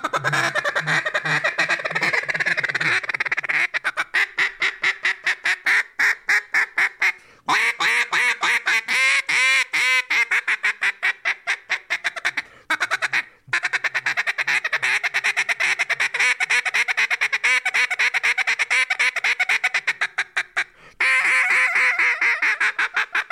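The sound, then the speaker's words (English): A duck call blown with loud rapid quacks running in long rattling strings with only brief pauses between bursts, no talking over it. “We need to go duck hunting.”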